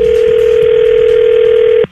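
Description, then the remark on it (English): A telephone call tone: one steady, mid-pitched hum with the thin, band-limited quality of a phone line, holding loud and unbroken for almost two seconds before cutting off abruptly. No one speaks. “All right, we're going to call her right now.”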